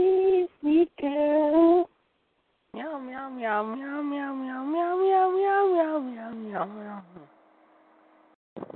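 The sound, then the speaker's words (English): A voice sings a short string of meows to a bouncy jingle-like tune, imitating a cat in a Meow Mix cat food commercial jingle: a few quick clipped meows, a pause, then a long drawn-out melodic meowing phrase, fairly loud. “This portion of the trivia contest is brought to you by Meow Mix.”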